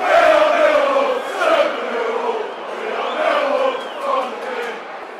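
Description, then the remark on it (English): A large stadium crowd at a Millwall versus Norwich football match chants and roars continuously after a Millwall goal late in the first half, the massed voices swelling and dipping in waves, loud and dense throughout with no individual speaker standing out. “That's brought the crowd into it.”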